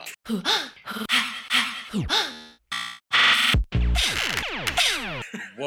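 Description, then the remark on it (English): A voice imitates an ocean sponge breathing with exaggerated, repeated whooshing "hoo-ha" gasps with rising and falling pitch, loud, mixed with a few noisy bursts and overlapping vocal sounds. “It's breathing and it's making a noise like this.”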